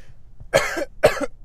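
human body sound, coughing

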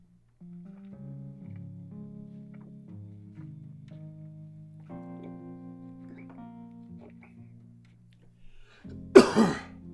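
human body sound, cough

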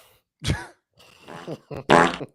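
sound effect, fart sound effect

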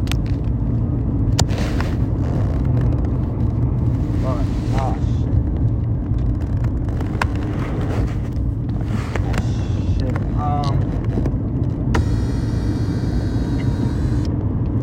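vehicle, road traffic passing

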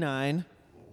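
animal, dog barking

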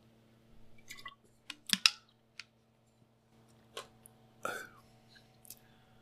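food or drink, drinking water

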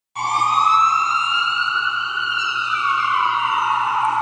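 vehicle, ambulance siren

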